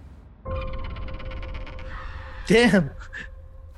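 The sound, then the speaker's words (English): A bird gives one loud, harsh caw, prominent, rising briefly above a steady droning background that carries on before and after it. “Just because of one bird?”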